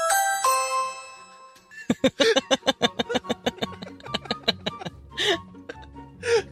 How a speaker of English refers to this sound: No, I was opening the old creaky door, but they had a ring doorbell at the front that I completely missed.